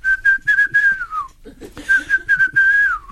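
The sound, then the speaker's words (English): Someone whistles a short advertising jingle for a company that will buy any car, two steady, fairly loud phrases split by a brief pause, the first gliding downward at its end. No one speaks. “I don't know who they are, but I can whistle it to you.”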